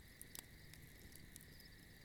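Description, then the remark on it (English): Crickets chirp in a steady, continuous drone while a campfire crackles with scattered sharp pops and snaps. Both sounds stay quiet and even, with no voices. “And begin to listen to the sound of the campfire and the crickets in the background.”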